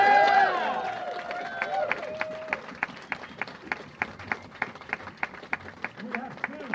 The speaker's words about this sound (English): And we are proud of the fact that our spine is those young socialists that would have met you at the door here, that are the backbone of this campaign, and I want you to give them the biggest round of applause you've ever heard.